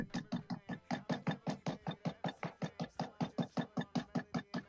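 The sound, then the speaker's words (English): Rapid, relentless banging on a basement door, roughly five hard blows a second in a steady unbroken rhythm, loud, with no voices. “We hear banging in the basement door.”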